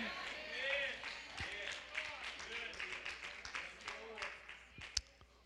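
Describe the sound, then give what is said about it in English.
An audience claps steadily for several seconds, a dense patter of hands mixed with crowd voices and shouts, with a few sharper, louder claps standing out near the end. “Because if y'all keep clapping and all that, I'm going to leave the airport and I'm going to start flying.”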